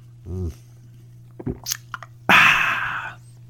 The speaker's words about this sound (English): But I'll just say this is a Coca-Cola Zero Sugar, and it is good. It is very good. I'm going to take another sip.